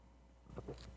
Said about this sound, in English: All right, so let me just take another sip here.